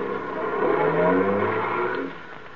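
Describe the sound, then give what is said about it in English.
A taxi's engine revs and accelerates as it sets off for 312 Main Street, its rising drone loud and steady for about two seconds before easing off as the car pulls away. No voices are heard. “Taxi. Hey, taxi.”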